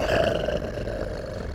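A lion roars, loud, a rough, throaty bellow that holds steady for a moment before fading into a lower rumbling growl, with no voices around it.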